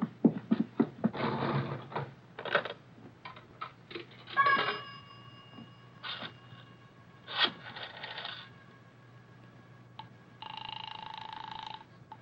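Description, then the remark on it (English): Coins clatter and clunk into a pay phone in a pay booth, then receiver handling, clicks and brief tonal beeps as a call is dialed, ending in a steady electronic telephone tone. “Miss, I have to make a phone call.”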